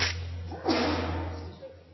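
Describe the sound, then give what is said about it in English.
A single sharp sneeze bursts out suddenly, a loud breathy explosion with a brief voiced trail, followed by quieter rustling over a steady low hum. “Are you sneezing on the people in front of you again?”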